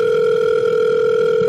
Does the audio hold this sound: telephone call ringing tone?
yes